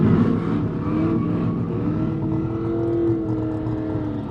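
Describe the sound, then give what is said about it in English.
An American muscle car engine, such as a Ford Mustang or Plymouth Barracuda, revs and races with a deep, throaty roar, pitch climbing as it accelerates down an airstrip, loud throughout with no voices, at an annual muscle car event in the mountain village of Orsa, Sweden. “Others take turns racing down an airstrip.”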